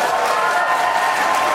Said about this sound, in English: Get loud and give it up for our panel today.